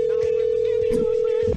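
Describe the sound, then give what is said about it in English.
A telephone ringback tone, from calling someone again, sounds as one long, steady electronic beep lasting about a second and a half, loud, with faint muffled voices and bumps underneath. “So, anyway, let's try to call her again.”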